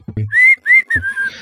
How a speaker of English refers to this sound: I just shut up and ride in silence. I just like start whistling to myself and kind of looking up and around.